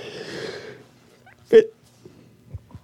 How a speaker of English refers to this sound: Sorry, I was yawning.